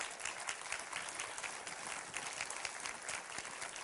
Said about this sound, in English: Now, give the Lord a good, worthy hand clap.